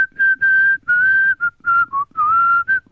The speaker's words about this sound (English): I think I should probably include this bit in the podcast. Just well, the bit of me whistling.